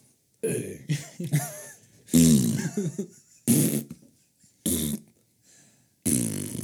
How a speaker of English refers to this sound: It's my ass. Whoa. You think we can fart the alphabets with our ass?